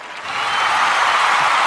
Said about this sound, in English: And the crowd go wild.